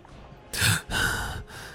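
A loud, sharp gasp for breath followed by a longer, raspy drawn-in breath, performed by a voice with no talking.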